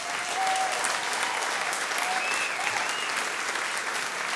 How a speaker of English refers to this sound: A pleasant applause? Or a standing ovation? What will it be? I'll give it a standing ovation.